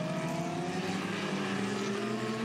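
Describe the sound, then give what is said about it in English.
The Caltex race car driven by Maximilian Götz in an iRacing race drones steadily as it peels off into pit lane, its pitch climbing slightly as it pulls along at moderate speed, with no one talking over it. “So, yeah, he'll unpick the secret iRacing shortcut at some point to get himself to the front as Maximilian Götz peels the Caltex car off into pit lane.”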